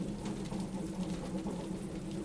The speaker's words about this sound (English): You draw open the curtains to watch the glittering ebony water beneath the steady patter of rain.